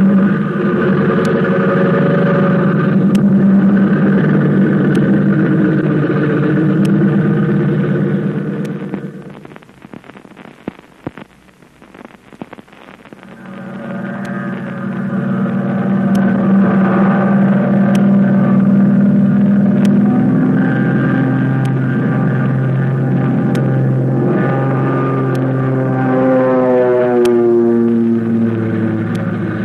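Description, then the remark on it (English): A loud American pursuit plane's engine drones steadily, fades briefly in the middle, then roars back up with its pitch climbing as if gaining speed, as it takes off and flies toward Yokohama, Japan. No one speaks. “the American plane with Flip Corkin at the controls is streaking through the sky toward Yokohama”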